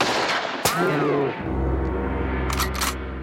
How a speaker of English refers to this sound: And then we hear the gunshot go off, and it's the hunter.